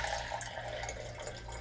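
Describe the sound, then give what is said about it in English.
Boiled sink water pours in a steady, continuous stream from a tea kettle, a splashing trickle with a faint low hum underneath, lasting under two seconds with no talking. “Well, I tell you, I got boiled sink water in the tea kettle over there, or I got moxie.”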